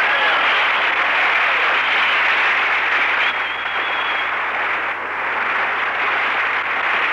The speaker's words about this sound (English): Hi, you fellas. Clap them hands. Stir up some air. It's hot in here.